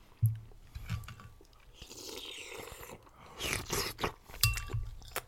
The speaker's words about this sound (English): You're not eating nearly close enough to the mic.